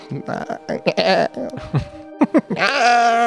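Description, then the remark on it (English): A person makes a series of short, nasal bleating noises, imitating a deer, ending in one long wavering bleat; the voice is fairly loud. “Yeah, so I think that's a bleat, that would be the sound that a deer makes, I guess.”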